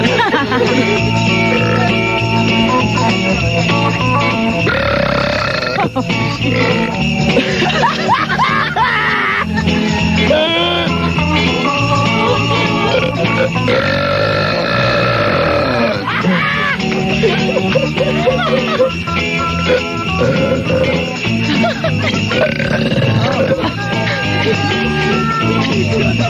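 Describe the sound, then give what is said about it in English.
Three people belch loudly together, long drawn-out burps overlapping in a continuous din, mixed with squeals and bursts of laughter. “Boy, guys do belch better than women, don't they?”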